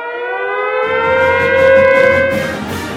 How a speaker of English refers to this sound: Let's now sound the tornado sirens.